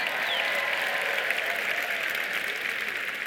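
Steady audience applause for the over-40 crowd fills the whole stretch, a dense, even wash of many hands clapping at a constant loud level with no voices breaking through.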